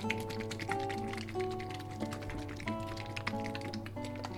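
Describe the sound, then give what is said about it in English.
Crisp, papery crinkling and light tapping as parchment paper is folded over fish, a quick irregular string of rustles heard over steady background music, with no talking. “Before we fold over the parchment paper.”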